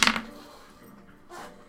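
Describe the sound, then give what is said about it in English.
Three dice, one of them a dragon die, clatter onto a tabletop: a sharp burst of knocking at first, then a softer rattle about a second later. They land on two ones and a six, with no one speaking. “Two of my dice were a one.”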